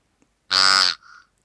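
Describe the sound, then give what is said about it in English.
A disapproving sheep bleat sound effect, played when a video game gets a disapproval: one loud, nasal, buzzy bleat lasting about half a second, followed by a fainter, shorter trailing note. No talking. “It's our new sound. It's my new disapproving sheep.”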